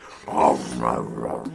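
A dog growls, a rough, voiced snarl lasting over a second that swells into short bark-like bursts, with no talking around it.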